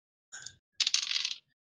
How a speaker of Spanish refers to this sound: Tírame una tirada porcentual, por favor. A ver, dados porcentuales. Dados porcentuales, eso se dice antes.